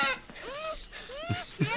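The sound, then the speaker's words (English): A young girl, Drew Barrymore in the film E.T., screams in high, piercing bursts, her voice sweeping up and down in pitch across two long shrieks, followed by a few short, choppy vocal sounds. “Excellent scream.”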